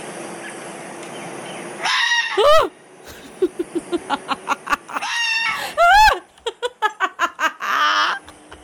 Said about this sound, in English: Let me see how foxes sound. Okay, we've got a video up on YouTube here that says the scream of a fox.